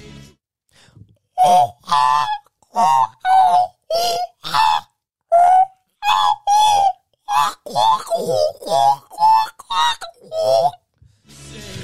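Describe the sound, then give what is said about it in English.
A person imitates a magpie call with a rapid run of about fifteen loud, warbling, honk-like vocal bursts in a broken, uneven rhythm, with no other sounds around them. “I've been working on my magpipe.”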